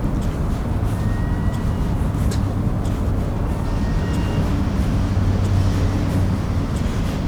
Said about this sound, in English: However, the train yard is pretty active right now, so.